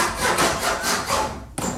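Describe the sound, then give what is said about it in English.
A hand saw rasps back and forth through wood in steady, rhythmic strokes, fairly loud, with a brief pause near the end before the sawing resumes. “I said, I'm just you do sawing it. Some wood.”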